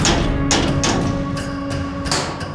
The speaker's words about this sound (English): But before she could say a word, there was a rapping at their cell door.